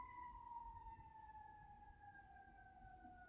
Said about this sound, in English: That's a good point, but it's just a renewed round of sirens waiting for. I wonder if they last this long every single time.